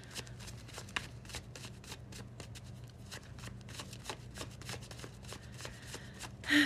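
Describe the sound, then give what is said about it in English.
A tarot card deck being shuffled, a steady run of quick crisp riffles and soft slaps repeating over several seconds, with a low hum beneath and a brief sharper noise at the end. “Let me give the deck a few shuffles and we can get into it.”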